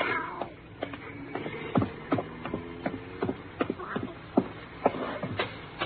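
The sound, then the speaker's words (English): A cat meows several times, its drawn-out, wavering cries mixed with scattered sharp clicks and shuffling noises, with no one speaking. “It was the cat.”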